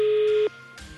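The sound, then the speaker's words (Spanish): A telephone ringing tone sounds as one loud, steady electronic beep lasting about half a second, then cuts off, leaving quiet line hiss and a faint rush of noise, as a call is dialed from a live radio studio. “marcamos teléfono y veremos si somos capaces de averiguar el quinto elemento en el día de hoy”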